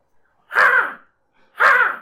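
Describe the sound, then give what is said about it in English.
A person imitates a crow with two loud, harsh caws, each about half a second long, separated by a brief pause, with no talking. “This is a crow.”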